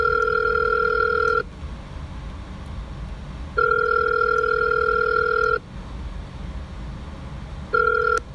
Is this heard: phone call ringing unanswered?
yes